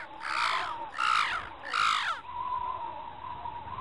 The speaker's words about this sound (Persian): باد ملایمی برگ‌ها را آهسته جابجا می‌کرد و چند کلاغ کهنه داشتند قار و قار خودشان را توی غروب خفه می‌کرد.